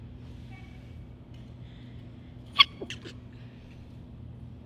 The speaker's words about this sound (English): I got to sneeze. Achoo.